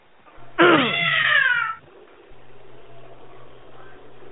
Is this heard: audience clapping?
no